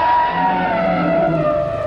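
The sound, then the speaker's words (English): An elephant trumpets in one long, loud, brassy blare that holds steady for about two seconds, its shrill tone sliding slightly downward, with no voices present. “This is the trumpet of an elephant, the world's largest terrestrial mammal.”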